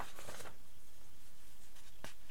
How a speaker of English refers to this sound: Rustling of notes. Okay, well maybe it is in the other notes then, because I was looking through the other ones.